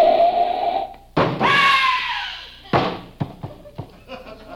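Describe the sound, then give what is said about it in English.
A loud, high screeching tone slides downward, then a sharp crash hits outside as a car knocks down a pedestrian, followed by several scattered clattering impacts as debris settles. No voices are heard. “Oh, Suddenly, I heard a crash on the outside.”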